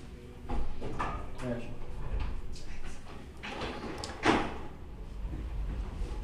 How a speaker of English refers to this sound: and we're gonna close that door real quick. I'm hearing some background noise.